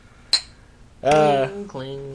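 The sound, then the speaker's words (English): A single bright, ringing clink of glasses touching in a toast, short, followed by a burst of voices right after. “Well, gentlemen, I'd like to toast you both. Not toast, but cheers.”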